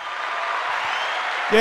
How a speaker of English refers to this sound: Do I have any? Let me see if I have any. I think I have some applause.